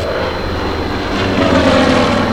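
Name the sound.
propeller airplane engine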